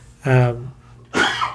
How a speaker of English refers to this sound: It's a cough, not a sneeze.